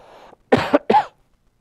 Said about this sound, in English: Excuse me while I try not to cough on into the mic.